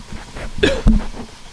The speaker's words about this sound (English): I cough right into the mic. Jesus. Sorry, we're all just smoking a bunch of weed.